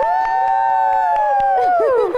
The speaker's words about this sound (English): Yeah. Round of applause for my team.